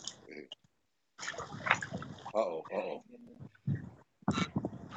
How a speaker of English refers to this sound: That's when you know we're live. The phone went in the water. Shout out to Apple for keeping that phone live.